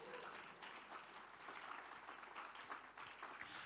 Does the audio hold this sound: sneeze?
no